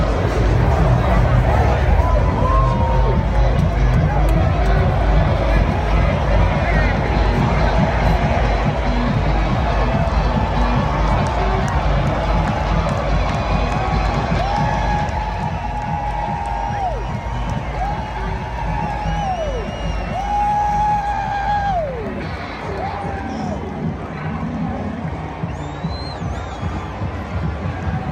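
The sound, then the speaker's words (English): A loud, rowdy football stadium crowd at the Penn State versus Minnesota whiteout game roars continuously, with cheering and yelling throughout and several sustained, wavering shouts and whoops rising above the dense babble. “Amazing game. The crowd is amazing. They are rowdy.”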